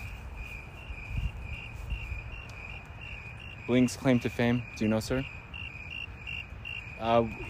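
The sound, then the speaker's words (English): Crickets chirp in a steady, continuous high-pitched drone throughout, while a man speaks a few short phrases over them in the middle and at the end. “The crickets...”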